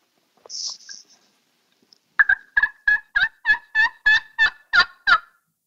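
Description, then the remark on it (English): A slate turkey call, struck softly with a striker to imitate a soft hen, makes a few brief scratchy squeaks, then a steady run of about ten clear, evenly spaced hen yelps, fairly soft and not raspy, with no talking. “So here's a different slate call, and you'll be able to hear that it's not as raspy.”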